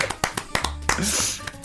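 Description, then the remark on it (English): A handful of sharp hand claps, quick and uneven in rhythm, sound over a voice talking, with a brighter hiss swelling briefly in the middle. “Oh, well, round of applause. There we go.”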